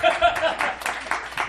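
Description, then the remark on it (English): A brief burst of audience clapping at a comedy show, dense, with murmuring voices mixed in underneath. “you're really killing my buzz with my fucking claps.”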